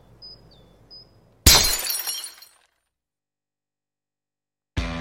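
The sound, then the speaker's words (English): A glass bottle being cut in half: one loud, sharp crack with a bright, crackling ring that fades over about a second, then silence before another abrupt burst right at the end. “You're telling me that bottle is cut in half?”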